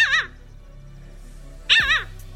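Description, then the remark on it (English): A parasitic jaeger gives two shrill, wavering calls, each brief and high-pitched with a nasal, yelping quality, separated by about a second and a half of quiet. “It's generally silent at sea, though it will make this shrill sound, which gulls and terns may hear as drop it.”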